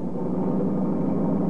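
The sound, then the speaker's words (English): A car's engine roars steadily, a loud, continuous rumble of road and motor noise without any voices, as a car approaches at high speed at night. “Well, company coming. Seems to be traveling at quite a rate. Too fast, even this time of night.”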